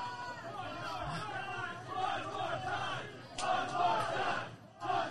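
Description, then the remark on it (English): A large arena crowd at a professional wrestling match featuring Ron Bass Jr. chants and roars in unison, a dense wall of many voices rising and swelling, with a sharp burst of cheering partway through. “I think crowd chants one more time.”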